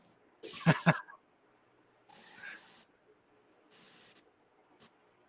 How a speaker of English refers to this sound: Let me just refill this real quick, my water. Mm-hmm. I meant to go sink water.